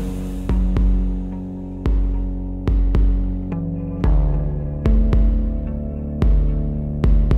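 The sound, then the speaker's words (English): Instrumental intro of a newly released pop cover song: sustained synth chords ring out over a deep, throbbing low pulse, punctuated by sharp percussive hits at a steady, moderate pace, with no vocals yet. “And here is a brand new release, …'s cover of …'s classic track, ….”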